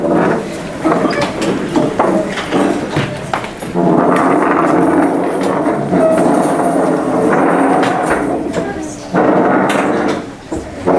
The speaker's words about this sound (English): Get all the chair screeching out of the way in one shot, right?